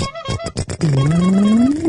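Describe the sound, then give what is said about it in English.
A car engine revs up with a steady, rising whine that climbs in pitch and holds loud for over a second, following a brief burst of choppy, uneven noise. “take her for a spin in the clown car.”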